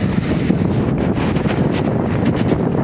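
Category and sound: nature, strong wind blowing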